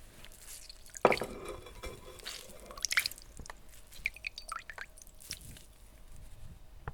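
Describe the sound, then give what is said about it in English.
Liquid being squeezed out of a linen gauze straining cloth held over a bowl, with wet squishing and irregular drips and trickles spattering into the bowl below. No one speaks. “And squeeze it out.”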